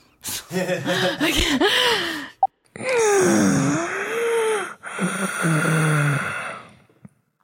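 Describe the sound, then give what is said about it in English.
Loud, strained breathing from one person doing strenuous breathing: labored, effortful gasps and groaning exhales in several long, uneven bursts with brief pauses between them, and no spoken words. “That was some good strained breathing.”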